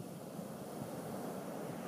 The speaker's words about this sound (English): There's an inherent drama to the places where the land meets the sea, like Point Reyes National Seashore, just north of San Francisco, which is where I recorded these sounds years ago.